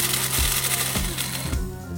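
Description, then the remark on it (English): A coffee grinder grinds steadily, a gritty mechanical whir with a low hum, pulsing in three regular surges about half a second apart. No one speaks. “Of course, a Bob, some water, a heat source, some coffee, and of course, a grinder.”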